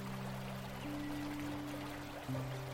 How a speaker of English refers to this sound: You take some time to enjoy the cascading water before deciding to jump feet first into the pool of water below.